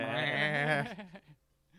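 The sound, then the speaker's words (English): A person loudly imitates a goat's bleat, a single wavering, nasal cry lasting under a second that trails off into quiet. “Goat man in the house.”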